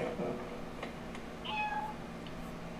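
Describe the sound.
A cat lets out a short, clear meow partway through, with a softer mew, over a steady background hum and faint murmuring voices.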